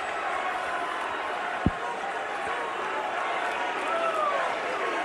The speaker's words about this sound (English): You can barely hear it, but the crowd is chanting Becky two belts. Because Becky had both titles before, and they wanted to see that moment again.